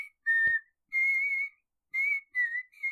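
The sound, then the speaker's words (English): A clear, tonal whistle from a ghost in a movie scene carries the sing-song 'This Old Man' nursery rhyme tune, the same tune as the Barney song, in four sustained phrases with short gaps between them, steady, with no talking. “The ghost is whistling the Barney.”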